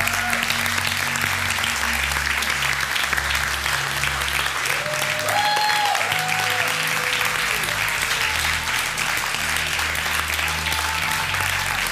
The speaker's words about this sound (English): You can give the best hand clap you can.